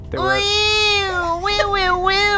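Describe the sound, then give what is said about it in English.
A person imitates a goat's mating call with a long, loud, nasal bleat that wavers and warbles in pitch for over two seconds, delivered alone without other talk. “Can I try to do my own goat mating call?”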